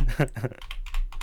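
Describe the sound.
Rapid, irregular clicking of keys on a computer keyboard, moderately loud, following a brief murmur of voice at the start.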